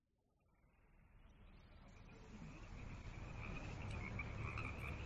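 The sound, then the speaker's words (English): A dense chorus of frogs croaking, starting faint and swelling steadily louder into a continuous, overlapping wall of calls by the end. “We put way more on the first few houses than the last few ones, and the frogs are leaving just as quickly.”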